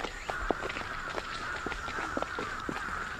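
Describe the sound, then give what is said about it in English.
A flock of crows gathering at dusk at a temple in Kyoto, Japan, caws in a busy, overlapping chorus, harsh calls popping up irregularly against a constant outdoor hum, with no one talking. “Well, the crows are gathering.”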